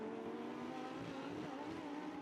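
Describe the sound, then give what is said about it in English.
Lamborghini race cars, all the same car, roar steadily on a race track during a championship race, a sustained loud mechanical drone with rising and shifting engine pitch, no voices present. “Spinelli heads down through the roller coaster”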